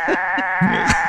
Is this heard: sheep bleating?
yes